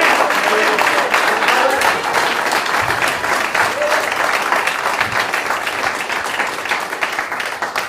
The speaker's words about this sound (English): And can we just give a big round of applause